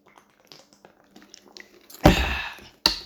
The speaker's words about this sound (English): But the most embarrassing thing of all, I need a sip of water.